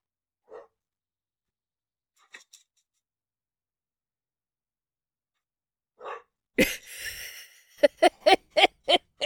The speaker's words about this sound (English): Okay, so I don't know if you heard that, but that is one of Diana's dogs, Dee Dee, being a complete lunatic. And Diana's asking, are Zoomies normal? Yes. And it's absolutely adorable.